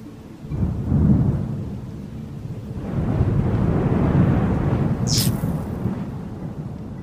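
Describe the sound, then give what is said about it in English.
Deep, rolling thunder rumbles continuously with two swelling surges, set against a steady wash of rain, and a brief high crackle near the end. “The storm that was about to blow overhead?”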